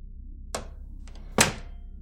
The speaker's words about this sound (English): I've always wanted to sleep in one of these cryogenic pods. Oh, this is nice. All right, just get on in here. Just close the door.